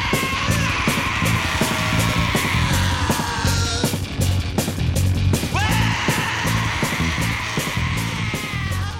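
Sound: screaming vocals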